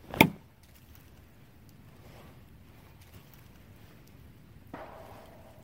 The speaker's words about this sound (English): You did a vocalization and a knock, and then about 50 seconds later, you had it as the home run knock response.